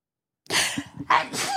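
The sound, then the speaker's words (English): A person sneezes after a brief silence: a sharp breathy intake, then a loud, explosive burst with a hissy trailing exhale. No one speaks. “but wait, I'm gonna sneeze.”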